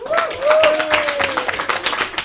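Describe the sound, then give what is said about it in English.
A live show audience claps for about two seconds, a dense, steady patter of many hands, with a drawn-out voice-like whoop rising over the clapping at the start, applauding to show who are regular listeners. “So just like by applause, who actually listens to this podcast regularly?”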